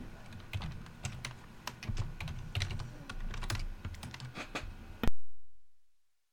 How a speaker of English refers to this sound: I can hear you typing now.